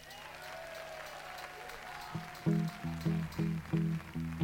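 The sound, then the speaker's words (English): An audience applauds the equipment crew in a steady wash of clapping, and after a couple of seconds a loud, rhythmic series of low tonal bursts pulses over the ongoing applause. “I'd also like for a round of applause for our fabled equipment crew who you just saw in action.”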